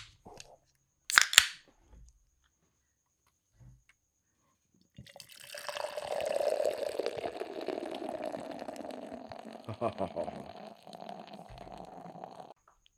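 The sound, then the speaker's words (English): A sharp crack of a cap or can opening, a pause, then beer pouring steadily into a glass for about seven seconds, glugging and fizzing. No one speaks. “What do you say we get this poured out, man? Let's get this poured out.”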